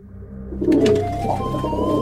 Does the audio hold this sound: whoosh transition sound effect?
no